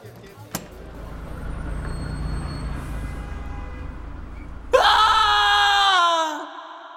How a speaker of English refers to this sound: I let out a scream as I opened the door and saw the alien on the other side.